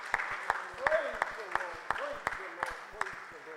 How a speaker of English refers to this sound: Let's give the Lord another hand clap of praise. Praise the Lord. Praise the Lord.